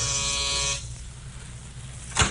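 A doorbell of a ground floor apartment with an outside entrance, in a white stucco apartment house halfway up a hill on Melrose Avenue, east of Vermont, gives one harsh, steady electric buzz lasting under a second, then stops. After a stretch of quiet, a short sharp knock or clatter sounds just at the end. No one speaks.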